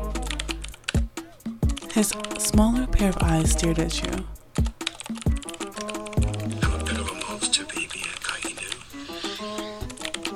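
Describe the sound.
Rapid, steady clicking of fingers typing on a computer keyboard, fairly loud, running continuously beneath a man's speaking voice.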